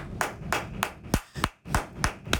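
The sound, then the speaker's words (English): A rapid series of sharp, loud hand claps, about eight in quick succession with a fairly steady rhythm, punchy with no voices. “And for now, let's listen to the loudest clap in the world.”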